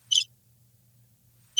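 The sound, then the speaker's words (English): A crickets sound effect: crickets chirp in two short, shrill bursts spaced over a second apart, with only a faint low hum filling the quiet stretch between them and no voices. “Where's the cricket thing? I need that because that's how I'm feeling right now.”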